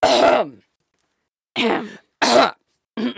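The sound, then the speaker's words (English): A voice imitates a pointed, disapproving cough: four short, throaty bursts with brief pauses between them, loud, with no other sound around them. “Yeah, just like a cough.”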